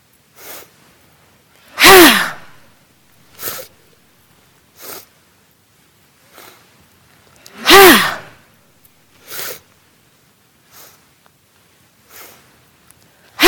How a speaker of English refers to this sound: We're going to orchestrate our breath. Up, out, up, and ha! Inhale, inhale, inhale, ha! Little sips of air.